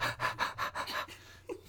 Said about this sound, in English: Heavy breathing.